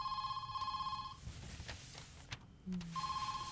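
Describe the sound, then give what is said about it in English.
A telephone rings twice late at night, just after two o'clock, each burst a steady, buzzy electronic tone, separated by a quiet gap holding faint clicks and a brief low hum. No one speaks. “You told me that you struggled to sleep too, so I thought I'd try and call.”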